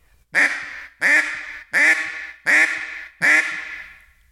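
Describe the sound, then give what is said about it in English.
Five loud, raspy hen quacks blown on a duck call, with the throat opening and the air slowing toward a boss hen call, evenly spaced about every 0.7 seconds, each a sharp nasal burst trailing off, clear with no talking. “But as I slow down, you'll slowly start opening your throat and slowing that air down, and then you'll get all the way to a boss hen.”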